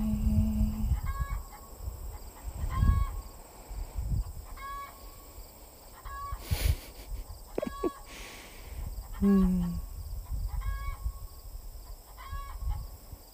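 A chicken clucks in a steady, repeating rhythm, about ten short clucks spaced evenly apart, with one louder squawk partway through over a low rumbling background.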